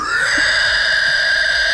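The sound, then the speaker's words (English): A person makes a loud, sustained, high-pitched squealing noise with their voice, imitating a pig. It holds one shrill, steady pitch for a couple of seconds without a break. “Jesus Christ, pig squeals and all.”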